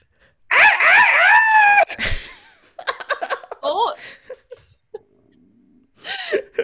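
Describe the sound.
A person imitates a rooster crow, a loud, wavering, high-pitched call lasting just over a second, followed by a burst of noise and then scattered laughter and voices.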